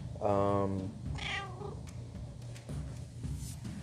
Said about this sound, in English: Never mind my cat that decides to meow.